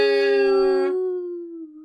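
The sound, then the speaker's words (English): A single loud air horn blast, a steady, buzzy tone rich in harmonics that holds for about a second and then tapers off into a fading, lower-pitched tail. “That was a good air horn.”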